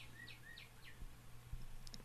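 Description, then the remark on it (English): A small bird chirps several quick, high tweets in a rapid run, then adds a couple more a moment later, fairly faint over a low steady hum with no one talking. “Does someone need to take care of that bird?”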